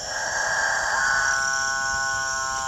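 Capuchinbird males calling at dawn in the Guyanan jungle: a loud, drawn-out droning moo that swells and holds steady over a constant hiss of jungle background, with no talking.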